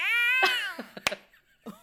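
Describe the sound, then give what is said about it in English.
A person imitates a regular house cat with one drawn-out meow that bends in pitch, followed by a few short, quieter vocal bursts and clicks. “Okay, I'm going to go the opposite way and do something very simple and a cat. Okay. A regular house cat.”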